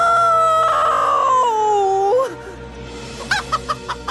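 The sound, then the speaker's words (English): A small chicken in a Thomas the Tank Engine story, flapping and landing on Thomas's buffer, lets out a long, drawn-out squawk that slides downward, then after a brief pause gives a quick series of five or so short clucks. “Sitting on his buffer was a small, very cute-looking chicken.”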